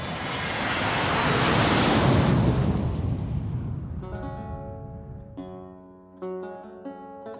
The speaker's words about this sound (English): There's going to be a plane noise now, I bet you.